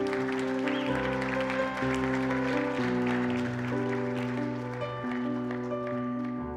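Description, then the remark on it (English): A crowd at a church service claps steadily, a dense patter of many hands, underneath sustained keyboard or organ chords that shift every second or so. No one speaks. “Let's give these people a hand clap today, amen.”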